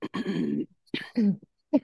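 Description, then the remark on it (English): A person coughs and clears their throat in three bursts, the first long and rough, the second shorter, then a brief final hack, with no talking. “Sorry, I'm coughing.”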